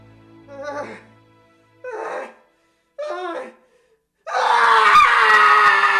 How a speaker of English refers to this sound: The scream began slowly, rising up from a place deep inside her, building and building until it tore at her throat and echoed off the walls of the room.